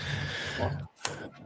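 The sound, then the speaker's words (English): Breathing into a microphone: a long, steady, airy exhale with a faint voiced hum, a brief pause, then a quick sharp intake of breath that trails off softly. “I could hear you breathing and your bubble was moving.”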